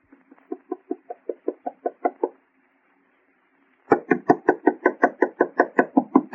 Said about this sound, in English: Knock harder, Alice. Knock harder.